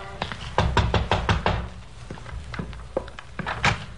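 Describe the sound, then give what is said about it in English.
Knocking on the back door of a worn single-family frame house on Oxford Street: a quick run of firm raps near the start, then a few scattered, lighter knocks, alone, with a faint low hum underneath. “A light showed in the rear window, so I walked around back and knocked on the door.”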